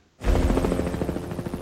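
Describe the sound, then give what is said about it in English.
A helicopter in the Jason Statham film Mechanic: Resurrection roars in abruptly and stays loud, its rotor blades thumping in a fast, steady chop over a heavy low rumble, with no voices. “Hey, Ed and Helicopter and Jason Statham. Straight away we know it's one of those.”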